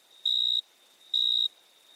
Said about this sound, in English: These cricket sounds came to us courtesy of Alexander at Orange Free Sounds and Doug Van Gausick.